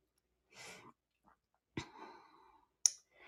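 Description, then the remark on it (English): Tarot cards being shuffled for a reading for the sign of Leo: a soft papery rustle, then two sharp slaps of cards a second apart, each trailing off in a brief flutter. Quiet overall, with no talking. “So let me go ahead and shuffle here.”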